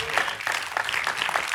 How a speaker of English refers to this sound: Yes, come on, clap your hands to the Lord if you're getting this today.